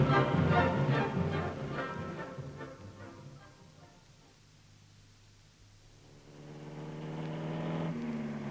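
The engine of a hired car drones steadily as it drives along a German road, its hum easing off briefly in the middle before swelling again as it picks up speed, with constant road noise and no voices.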